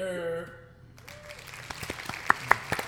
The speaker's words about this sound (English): You can hear the clap. I don't mind. I'm still clapping.